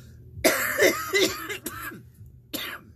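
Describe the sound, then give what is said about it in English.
A loud, harsh sneeze bursts out, followed by a couple of shorter breathy sputters and, after a brief pause, one more sharp burst. No one speaks. “Gesundheit.”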